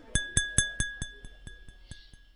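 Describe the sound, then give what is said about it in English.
An elderly gentleman at the head of a dinner table stands and taps his glass with a spoon about eleven times in a quick, even rhythm, each bright clink fading a little, while a high, steady ring hangs under the taps. No one speaks. “As Felicity was put into the chair next to him, he stood up and tapped his glass with a spoon.”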